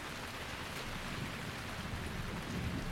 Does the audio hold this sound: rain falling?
yes